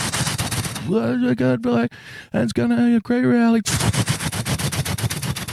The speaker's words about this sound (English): I think on his way to Pennsylvania for tonight's rally, Donald Trump did one of his usual, I'm going to talk beneath the sound of a rotary engine so barely anybody can hear me.